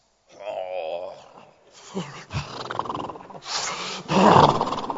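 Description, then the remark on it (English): A voice imitates snoring: first a wavering, groaning hum, then a series of loud, raspy snorts and rattling breaths, the last one the loudest. “Or you are going to marry a man who snores.”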